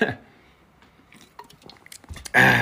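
Sipping from a can of Liquid Death: a few small metallic clicks and taps, quiet wet slurping sounds, then a sudden louder burst of breathy noise at the end.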